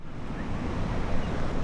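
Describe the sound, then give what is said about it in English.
A steady, full roar of Mississippi River white water churning over the chain of rocks near the northernmost tip of St. Louis while the river is quite low. It is broad and continuous with no pauses, fairly loud, with a breezy wash on top and no voices. “White water tumbles over the chain of rocks near the northernmost tip of St. Louis.”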